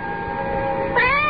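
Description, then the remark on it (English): A cat, one of twelve cats sitting in the dark, meows in a long, drawn-out cry that swells and rises in pitch near the end. No one speaks. “How many cats are there here sitting in the dark? There are 12.”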